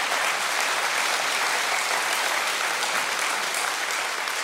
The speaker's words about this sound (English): One person applauds. Let's join them. There we go.